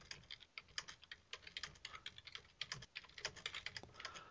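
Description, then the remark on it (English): Rapid, uneven clacking of keys on a computer keyboard as someone chats in an online chat room, a steady stream of crisp taps with brief pauses, fairly quiet and with no voices. “I can hear you punching the keys.”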